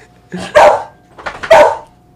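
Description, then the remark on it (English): A dog named Bailey, told to speak, gives two loud, mid-pitched barks about a second apart, each a short rough burst with a slightly drawn-out tail, and no voices in between. “Can you speak? Speak. Speak.”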